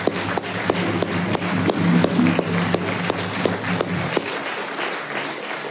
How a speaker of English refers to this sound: Let's give them now a huge round of applause.